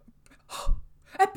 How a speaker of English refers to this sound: Mistyfoot gasps behind him